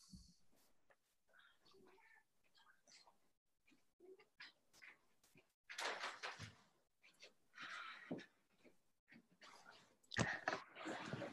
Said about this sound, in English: Just one second, I've got a cat trying to dig into something. Okay.